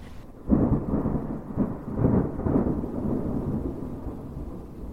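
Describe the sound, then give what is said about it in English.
Rain starts to come down on a moving car at night after a brief quiet, joined by a deep, rolling rumble like thunder that swells and lingers steadily to the end, with no voices. “Yes, and to top it all off, here comes rain.”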